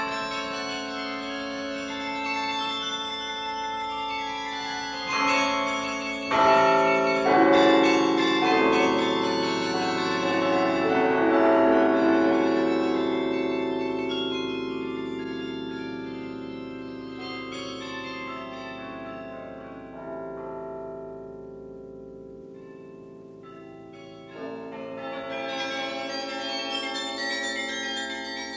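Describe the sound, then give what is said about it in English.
Carillon church bells in Dordrecht ring out a continuous melodic peal of overlapping, resonant tones that swell, fade into a brief lull, then resume. There is no talking. “These are the most joyous bells in Europe.”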